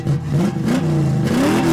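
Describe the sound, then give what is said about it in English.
A van engine revs and accelerates, its pitch climbing and wavering in a steady drone that fills the short moment with no talking over it. It is the All Stars 1 van driven by Delta Work. “Delta Work driving the other All Stars 1 van, and Evie Oddly's teeny tiny little boa car from her season 11 entrance.”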